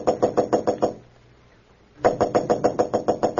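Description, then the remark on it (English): Rapid, sharp knocking on the door of room 911 at the Marlboro Hotel in Marsden City, as Clark Kent knocks, fairly loud, in two quick bursts separated by about a second of quiet, with no voices present. “Roebling aboard a Metropolis-bound train to room 911 at the Marlboro Hotel in Marsden City, Clark Kent was about to knock at the door when suddenly he blanched.”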